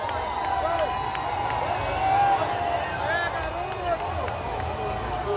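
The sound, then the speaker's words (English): A large crowd of Bolsonaro supporters by the military fort at the end of Copacabana Beach, Brazil, at a 200th independence anniversary event, shouts in a loud, continuous roar of overlapping voices, chanting "Lula, thief, your place is in prison," with rising and falling phrases and scattered whistles and claps. “Bolsonaro supporters who have broken through the barriers to get closer to the president. Now they're shouting, "Lula, thief, your place is in prison."”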